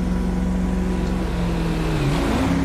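A car engine drones steadily at speed, about 70 or 80, on Joshua, loud, with a constant hum and a brief dip and rise in pitch near the end. No one speaks.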